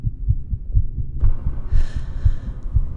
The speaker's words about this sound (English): Without the sense of sight, the sense of hearing is enhanced. You can hear your heartbeat.